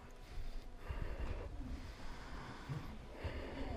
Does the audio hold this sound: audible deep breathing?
yes